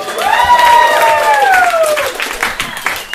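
A crowd breaks into loud applause, dense steady clapping mixed with cheers and whoops, including a few high sustained shouts that slide downward, before the clapping thins out.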